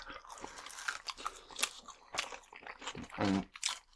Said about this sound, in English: And that crunch is the chicken. Well, it's like that crunch, too, is still after like 15 minute drive back.